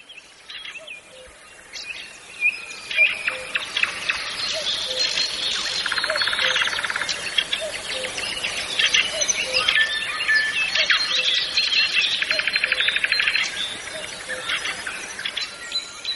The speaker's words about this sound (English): I think that's a dawn chorus from Chernobyl. You can hear the cuckoo in the background.